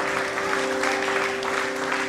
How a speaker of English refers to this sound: Oh, somebody, give the Lord a clap in the house tonight.